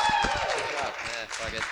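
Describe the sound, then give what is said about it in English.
An audience at a comedy show claps steadily for two comics after a round, in a dense patter of overlapping hand claps, with voices whooping and cheering over it throughout. “Guys, clap for these two. Clap for them.”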